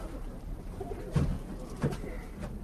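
Pigeons coo softly, with a couple of louder low burbling coos around the middle against a steady background hum.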